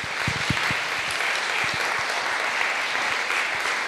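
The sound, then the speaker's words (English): An audience at St. Saviour's applauds steadily for several seconds for the people running the Dwell reading plan, a dense, continuous wash of hand claps with a few sharper individual claps standing out at the start, holding an even loudness throughout. “who are doing these things a round of applause”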